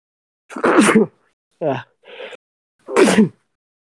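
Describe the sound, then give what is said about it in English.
A man sneezes twice in the background, sharp and loud, about two seconds apart, with brief vocal noises in between and no talking around them. “Yeah, I don't mind him sneezing in the background.”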